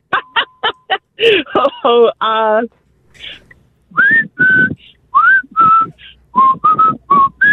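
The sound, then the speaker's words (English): A person whistles a short tune, a string of clear, bright notes in quick bursts, preceded by a few brief vocal sounds and chuckles. “So you just whistle and you don't even know you're doing it. Give us a little taste of your whistling.”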